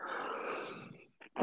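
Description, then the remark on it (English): A person in a sneezing fit sneezes with a long, breathy, noisy burst that trails off, then a short catch of breath and the loud, sharp start of another sneeze. “Excuse me, I'm having a sneezing fit.”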